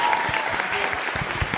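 A crowd applauds steadily, a dense wash of many hands clapping at an even, fairly loud level with no break, a few individual claps standing out from the mass.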